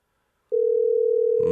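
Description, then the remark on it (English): After a moment of silence, a steady mid-pitched telephone ring tone starts and holds unbroken for about a second, with a rougher burst of sound joining it at the very end. A live radio show calls a listener at 6:15 in the morning, and the call goes unanswered. “We'll call Chris up and get him on the phone because I love that.”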